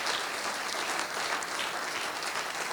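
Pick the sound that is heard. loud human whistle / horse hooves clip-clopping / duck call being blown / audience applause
audience applause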